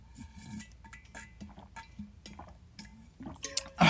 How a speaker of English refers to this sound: sorry, I'm drinking inside the car, bro. Like, it's freaking hot. I'm recording inside my car. Hold on. Let me take a sip out of this tin can.